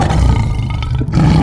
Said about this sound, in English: We still have a lion down here to deal with.